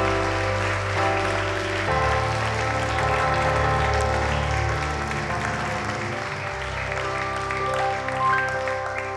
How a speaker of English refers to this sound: we want to give you a huge round of applause. Huge round of applause.